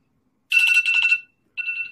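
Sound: timer alarm ringing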